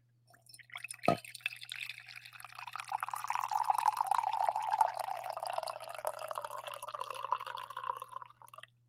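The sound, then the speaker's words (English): A sharp clink of ceramic, then a steady stream of breakfast coffee poured into a cup for several seconds, gurgling and rising slightly in pitch as it fills, over a faint low hum. “The inaugural 2024 Best Ball Breakfast Coffee Pour.”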